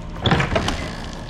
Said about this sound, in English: Beyond it, a door at the back swung open.